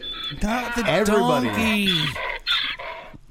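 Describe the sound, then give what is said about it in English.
A person voices a loud, strained braying call, pitch sweeping up and down in wavering bursts like a donkey's hee-haw, with no clear words. “Not the donkey.”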